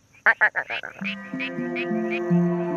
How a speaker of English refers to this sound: So if you hear the little frogs, like the quacking frog, they got this.